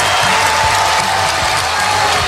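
A hockey arena crowd of Blackhawks fans in Anaheim roars and cheers in a loud, dense, unbroken wash of noise, with applause and scattered whoops mixed through it for the whole stretch, in the final seconds of the third period as the Hawks beat the Ducks 4-2.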